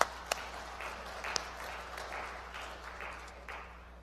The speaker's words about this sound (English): Yeah, so let's clap